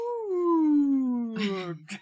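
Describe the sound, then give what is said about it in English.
A voice imitates a whale call with one long moan that slides slowly down in pitch for nearly two seconds, then breaks into a breathy rasp and a short final puff. “You're way better at whale speak than I am.”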